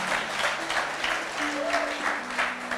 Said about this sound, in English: Come on, clap those hands to God.